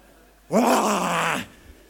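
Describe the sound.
A man lets out a single loud, raspy roar in imitation of a caveman, a rough growling shout lasting about a second that starts abruptly and fades at the end.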